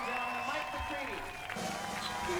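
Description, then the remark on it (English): A concert crowd shouting, a dense, steady wash of many voices calling out at once, loud and continuous for a couple of seconds with a brief dip in the middle. “Sorry, you can hear them shouting out.”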